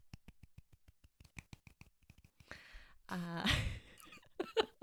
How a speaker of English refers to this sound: Oh, yeah. We love it. Yeah, the crowd has gone wild. Golf clap. Yes.